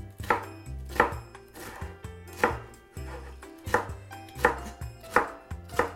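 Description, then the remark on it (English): A knife dices a bell pepper into small pieces on a cutting board in a steady run of crisp, sharp chops, about one every half second to second, over a low, steady tonal background with no talking. “And then we'll just go the other direction and dice it up into small pieces.”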